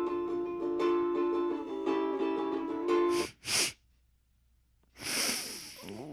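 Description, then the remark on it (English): A sustained tonal drone gives way to two quick, sharp sniffs, then a pause and a longer, breathy snuffling inhale, fairly loud. “That was a sniff.”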